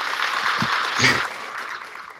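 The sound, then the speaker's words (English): A crowd applauds to welcome a guest onto the stage, with steady, dense hand clapping that holds for the whole stretch, swelling briefly midway as a voice or cheer rises over the clapping. “I wasn't ready for the claps.”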